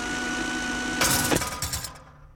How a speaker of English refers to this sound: I love the sound of power tools in the morning.